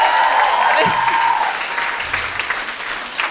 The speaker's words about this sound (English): Applauded for them. I did this as if I were in the audience.